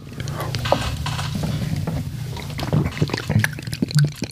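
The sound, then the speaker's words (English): Quiet gulping as someone downs a shot of Jägermeister with a hint of coffee, a few soft wet swallows and small clicks near the end over a low hum, with no talking. “So breathe all the way out and then drink.”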